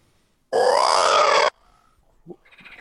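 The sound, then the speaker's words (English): A person makes one loud, raspy, throaty croak about a second long, mimicking a frog, followed by a short pause and some faint, scattered noises. “how do we know that you're an expert unless you can replicate that noise? How would you summon the frogs without making a frog noise?”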